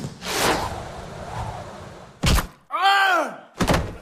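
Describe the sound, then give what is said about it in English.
A cannon-like blast with a rushing whoosh as a cannon fires a shepherd's pie at a person, followed a couple of seconds later by a loud thud as it hits him, a brief wavering vocal cry, and a second heavy impact. “I shall load this shepherd's pie, aim it at a distant povo, and then fire it.”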